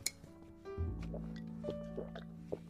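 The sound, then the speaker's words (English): Whiskey glugs steadily into a glass, opening with a light clink and a few small taps and drips over the pour. No one speaks. “Give me that whiskey. Sure. More whiskey.”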